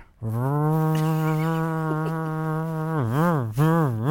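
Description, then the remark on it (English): A voice imitates a coffee grinder with a steady, low buzzing drone held for about three seconds, then wavers up and down in pitch twice before stopping. No speech. “What does it sound like, the grinder?”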